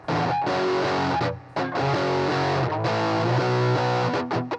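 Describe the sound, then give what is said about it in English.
A loud, distorted electric guitar plays a classic rock riff of chugging power chords, with short pauses between phrases and no voices. “I'm going to get out my guitar and I'm going to play a kind of classic sounding guitar riff.”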